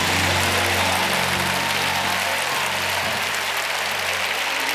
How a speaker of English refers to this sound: I don't know where you are, but those of you that need a pain-free week, I need you to start clapping your hands like God is addressing your pain. Oh, come on. You got to do better than that. Clap your hands like God is dealing with your pain.